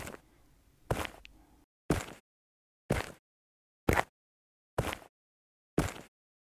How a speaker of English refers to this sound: Footsteps. That's someone walking on dirt.